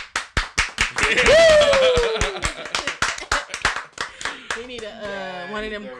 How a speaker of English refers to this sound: When I edit I'm gonna say it again because when I edit it, I'm gonna put the clapping in.